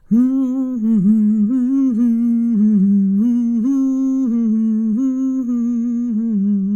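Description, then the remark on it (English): A single voice hums steadily for several seconds in a vocal warm-up, a bright buzzing tone placed at the front of the mouth that wavers gently up and down in pitch, fairly loud with no words. “Now let's put it to the front of our mouths.”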